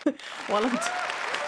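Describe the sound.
A short burst of applause, a steady wash of clapping with excited cheering voices rising over it, following a brief vocal sound at the start.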